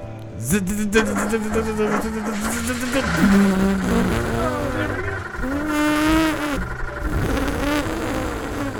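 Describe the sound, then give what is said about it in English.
A person vocally imitates a car engine starting and revving, a continuous buzzing, sputtering drone that rises and falls in pitch for several seconds, fairly loud. “Go ahead and start the engine.”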